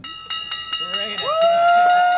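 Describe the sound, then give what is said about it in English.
A traditional finish bell on a dock is rung by rowing team members after crossing the finish line: about ten quick, even clangs blending into a bright, sustained metallic ring, while a voice rises in a whoop partway through. “They glide silently to the dock, step off, and ring the traditional bell.”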